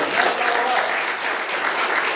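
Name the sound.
audience clapping hands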